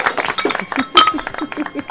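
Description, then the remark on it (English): Beer glasses clink together in a toast: one bright, ringing knock that lingers briefly, with voices murmuring underneath. “Cheers, everybody.”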